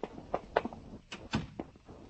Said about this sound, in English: You closed the door. Close it yourself.